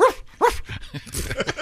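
A dog barks twice in quick succession, loud, followed by a brief stretch of softer, rougher yapping sounds.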